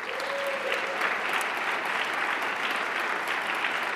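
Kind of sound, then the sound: crowd, audience applause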